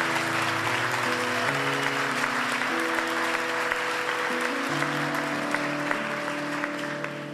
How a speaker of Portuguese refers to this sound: Aplauda o Senhor, aplauda o Senhor.